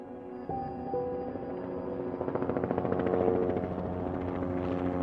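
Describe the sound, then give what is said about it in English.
A Mayo Clinic medical helicopter flies by, its rotor thumping in a rapid, steady chop over a loud engine whine, swelling briefly in strength before holding steady. “Mayo Clinic medical helicopters like Mayo 1 fly nearly 2,000 flights a year.”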